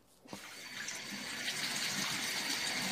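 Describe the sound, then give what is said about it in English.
After a brief moment of quiet, water from a bathtub faucet starts gushing and keeps running in a steady, full hiss, with no voices. “I mean, or you could maybe just clean yourself up old school with just, you know, maybe a tub faucet.”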